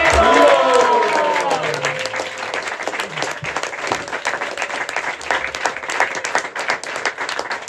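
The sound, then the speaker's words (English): An audience bursts into sustained applause, many hands clapping in a dense, steady patter that fills the room, with some cheering or voices briefly audible at the start. “Can we have a huge round of applause?”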